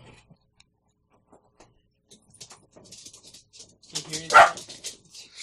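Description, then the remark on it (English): A dog gives a sharp bark near the end, objecting to a cat doing something dangerous, after several seconds of near silence with only faint ticking clicks and soft murmurs of voices in the background. “Yeah, the dog doesn't like when the cat does dangerous things.”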